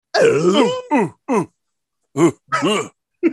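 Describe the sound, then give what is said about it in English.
A voice imitates moose calls with a series of six loud, throaty groaning bursts, the first long and wavering, the rest short with rising and falling pitch, separated by brief silences. “Y'all be stepping on my moose sounds.”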